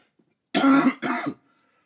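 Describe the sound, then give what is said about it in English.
Two loud coughs in quick succession, each a harsh, chesty burst, with nothing else but near silence around them. “There goes that nagging cough that everybody has because they're trying to kill everybody.”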